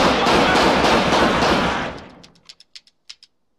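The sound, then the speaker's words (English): A loud, roaring barrage of gunfire from a movie scene fades out over two seconds, then about six short, sharp cracks follow in an uneven rhythm. No one speaks. “Yeah, before he even shot the gun.”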